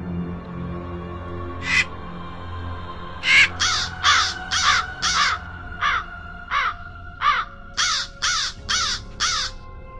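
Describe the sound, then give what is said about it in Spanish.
A crow caws loudly about a dozen times, one lone call and then a quick steady series of harsh caws, over a low droning background with no talking. “Historias del más allá, en la voz de un cuervo.”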